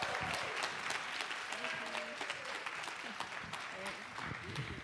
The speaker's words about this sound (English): You know how to clap. I want to hear you give a big gathering welcome